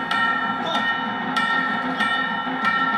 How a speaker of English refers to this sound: And she knees him. Knees him, and you just hear the bells going boing, boing, boing, boing. Like the end of that piece of music is just a series of the bells tolling.